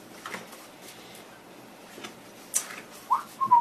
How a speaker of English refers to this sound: I'm whistling innocently as I follow her.